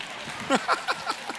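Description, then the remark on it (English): A handful of sharp claps from audience members in a quick, fairly even rhythm, about five in a row, moderately loud over a faint background hiss with no one talking. “Would you just clap?”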